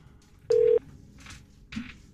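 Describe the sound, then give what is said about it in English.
A telephone line rings during a call to a warranty processing company: one short, steady electronic tone sounds over the line, followed by faint crackly bursts of line noise against a quiet background hiss. “Ringing.”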